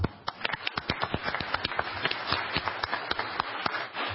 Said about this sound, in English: So I really take my hat off to Director DeYoung, Rich McVictor, and your entire staff, and I would appreciate if you would accompany me in an applause for them.